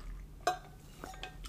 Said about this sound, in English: All right, I'm just going to take a little sip of water and we're going to get into just my week recap.